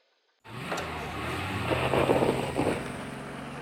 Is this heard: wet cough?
no